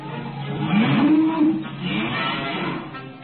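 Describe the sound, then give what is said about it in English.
A single low moo from a cow called Bossy rises and holds for under a second over the steady rushing, windy noise of a cyclone. “And Uncle Henry Pepper. Bossy! Bossy!”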